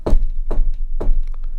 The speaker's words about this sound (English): Inside, but outside, there's a knocking.